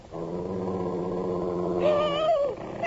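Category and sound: animal, wolf growling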